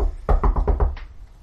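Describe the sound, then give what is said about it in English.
Five quick, sharp knocks on the door of a home in a fast, even rhythm, fairly loud, with no voices. “You're just kind of at home cruising, and there is a sharp and rapid knock on the door.”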